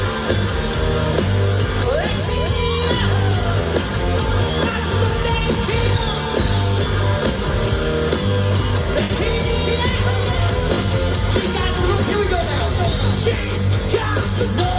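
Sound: concert crowd singing along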